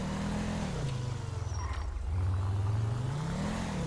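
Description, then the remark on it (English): The engine of an unmarked NC State Taurus patrol car revs steadily, its pitch dipping and then climbing again as it idles and accelerates, fairly loud with no voices. “We have a NC State unmarked Taurus patrol car with created out of a Blaine County one.”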